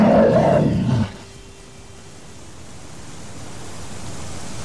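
A loud, rough bear roar bursts out for about a second, deep, then cuts off abruptly into a faint, hissing background with no voices.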